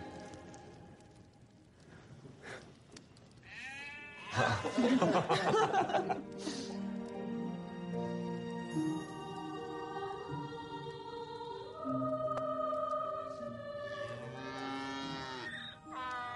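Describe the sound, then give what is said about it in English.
A loud, drawn-out donkey bray rises and falls in strained, wheezing cycles for many seconds. It is harsh, with a faint chuckle near the end. “Is that your donkey?”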